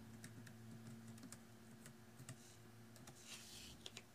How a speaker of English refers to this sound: So if you'd like me to do more keyboard sounds, please let me know.